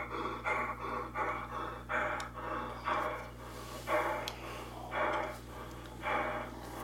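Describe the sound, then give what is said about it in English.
Puppies bark and huff in a steady run of rapid, breathy bursts, about one or two per second, over a constant low electrical hum. No one speaks. “Here we go. Puppy dogs.”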